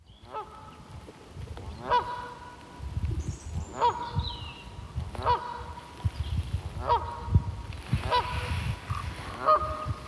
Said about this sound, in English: So we had a pair of Canada geese. So here's the recording I made outside. And I'll try to avoid the bits where it was windy, because it's the other thing we're getting is the autumn winds. Here are the geese anyway.